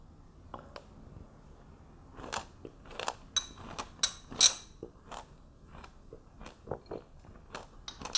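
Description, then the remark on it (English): Crisp crunching as someone bites into and chews a juicy pomegranate, with a series of irregular sharp crackles and wet pops spread across several seconds, no talking. “They have an amazing crunch.”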